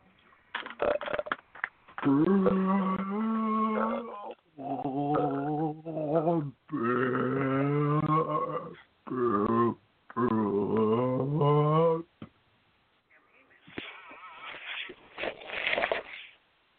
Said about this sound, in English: Ooh, that makes me feel good when we give the ultra belch.